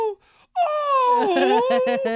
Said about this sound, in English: Oh, he did a bunch of love howls. Yeah. And that, which made the dog howl.